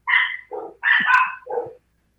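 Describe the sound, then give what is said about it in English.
A dog barks in a quick run of four sharp barks, some higher and yappy, others lower, with brief gaps between them and then silence, while its owner gets after his dogs. “Real quick, while he's getting after his dogs”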